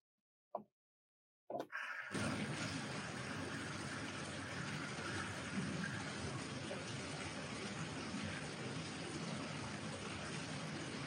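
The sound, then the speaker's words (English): After a couple of brief knocks, a steady, dense hiss of heavy rain falling outside in Florida sets in and continues evenly at a fairly loud level, with no voices. “Only in Florida, it's raining outside now.”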